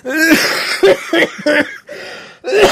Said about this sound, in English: Sorry, everybody. I do not have a cough switch, and you're just going to have to deal.